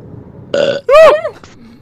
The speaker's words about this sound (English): I was never able to do it as a kid, and up until now, I'm not able to do it. But my friends were able to do it. It is the coolest thing ever. Yeah, you see, it's the coolest thing ever. Here's my attempt at a builder burp.